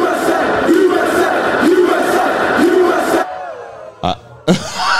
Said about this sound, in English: USA, the drunken crowd.